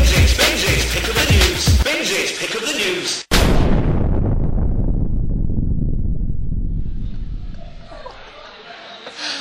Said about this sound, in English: Explosion? Oh, they all end in an explosion.